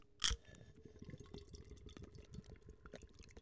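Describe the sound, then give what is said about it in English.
A sharp hiss as a bottle or can of IPA beer is cracked open, followed by a steady stream of gurgling, fizzing liquid as the beer is poured into a glass. No voices. “What do you say we crack this open?”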